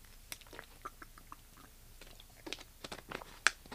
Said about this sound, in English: I'm going to get a drink of water here.